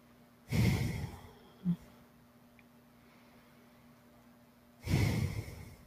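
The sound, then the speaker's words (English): Two heavy, labored breaths through the mouth of a person short of breath, each a long rough rush of air, separated by a few seconds of quiet with a small catch in between; no one speaks. “I can't talk a lot because I'm running out of breath so bad.”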